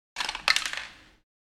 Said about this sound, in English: If somebody could roll history check, please. 2 dice.